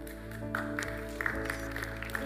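A few sharp, scattered hand claps from a person clapping toward the speaker as a sign that a morning gathering is done, irregularly spaced, sound over a steady sustained musical tone, with no talking.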